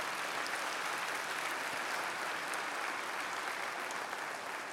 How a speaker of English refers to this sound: Yeah, let's give them a good round of applause.